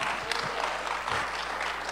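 An audience claps steadily, many hands producing a dense, continuous patter of applause that holds at an even level throughout.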